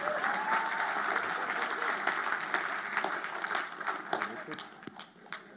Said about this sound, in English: Oh, come on, if you're going to clap, make sure it's a good one.